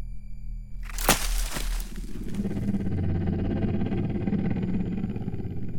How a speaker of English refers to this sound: What was that? Now, wait a second. You think the sound of 1,000 souls being dragged to hell by their short hairs is my radiator giving up the ghost, but you get scared of a deer or some damn thing?